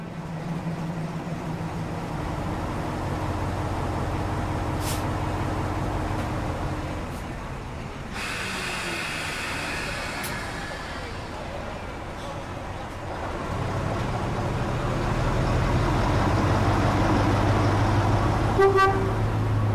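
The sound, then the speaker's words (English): A Class 33 Crompton diesel locomotive idles while waiting for the signals on a railway, with a steady, deep engine rumble and droning tones, broken midway by a few seconds of loud rushing hiss before the throbbing engine noise continues. “There's now a Class 33 Crompton diesel waiting for the signals at the same place as Cheltenham was only 5 minutes ago.”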